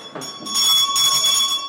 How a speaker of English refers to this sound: The camp bell tells 11-year-old Tommy it's time to move on to the next class